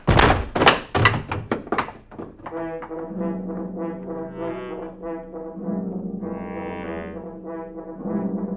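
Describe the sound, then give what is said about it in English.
A rapid series of heavy thudding blows, like hammer strikes, as a father and his daughter are bludgeoned to death, lands about seven times in quick succession, then gives way to a sustained, ominous droning tone. “A father and his daughter were just bludgeoned to death.”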